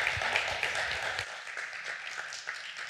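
An audience applauds steadily after a sermon and prayer, clapping for the Lord's word and to thank the pastor, many hands clapping in a dense, continuous patter at moderate volume with no clear rhythm, a low rumble dropping away partway through as the clapping carries on.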